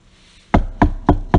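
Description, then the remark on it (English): Four firm knocks on a wooden door, evenly spaced, each a solid thud with a short ring, heard alone with no voices. “knock on your door and ask you”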